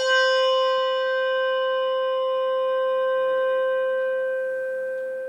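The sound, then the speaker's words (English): A single Malmark handbell without a tang rings out clearly with a bright, pure tone and shimmering overtones, sustaining and slowly fading over several seconds, heard alone. “Malmark bell, no tang.”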